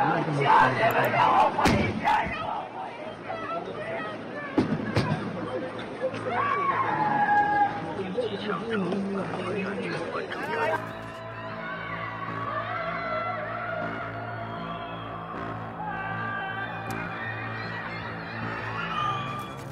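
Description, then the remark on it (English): Many voices of Shanghai residents scream and shout together from their apartment buildings and COVID quarantine facilities during lockdown, in a loud, continuous mass, rising and falling in waves over a steady crowd roar, with occasional thuds breaking through. “This is the sound of people screaming from their apartment buildings.”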